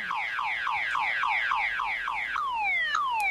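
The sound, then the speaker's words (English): A loud electronic alarm, set off when a bed was kicked, blares with rapid, repeating downward-sweeping tones, then shifts to longer falling wails, continuous with no voices. “I just kicked the bed and now the alarm's going off.”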